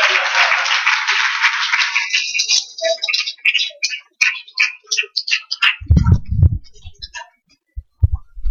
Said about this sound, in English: Come on down, sisters. Let's give them a big round of applause, brothers and sisters.